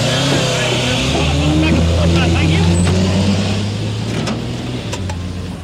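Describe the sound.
A heavy truck engine rumbles loudly, its low drone steady as the vehicle rolls in, with indistinct voices mixed underneath and a brief hiss near the end.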